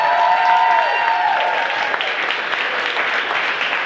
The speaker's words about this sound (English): So let's clap it up. Get the energy high.